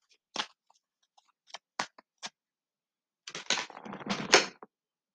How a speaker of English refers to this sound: Don't worry, I actually did shuffle these cards really good. It just comes out.